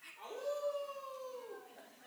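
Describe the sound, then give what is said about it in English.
A child's voice imitates a wolf, drawing out one long, wavering howl that rises slightly and then fades, fairly loud, with a few softer puppy-like yips at the end. “We have one wolf and some puppies. I hear some kitties.”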